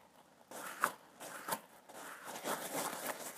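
A soft, gritty crunching and rustling as a squishy sticky lion toy that sticks to walls, packed with tiny foam beads, is squeezed repeatedly, producing irregular crackly bursts with no talking.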